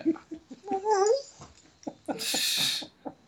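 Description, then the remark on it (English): A puppy whines in a high, wavering tone, with a rising and falling whimper near the start, then gives a breathy huff and short snuffly sounds. “I guess we're bumping up against the dog's time limit.”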